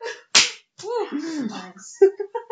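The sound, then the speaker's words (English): A single sharp, loud slap as a person excitedly hits themselves, followed by excited vocal yelps and wordless exclamations. “So excited that you hit yourself.”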